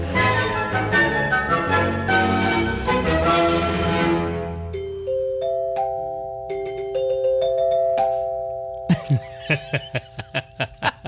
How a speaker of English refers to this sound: I told you I was going to get you those bells. Thank you. You're welcome.